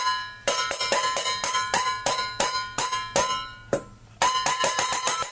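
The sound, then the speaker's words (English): Metal mixing bowls in a hardware store struck as percussion, a quick irregular run of bright clanging hits, each ringing briefly with a bell-like tone. The sequence pauses briefly near the end, then the clattering strikes resume. No one speaks. “he knocked over a bunch of mixing bowls by accident, and he loved the sound they made.”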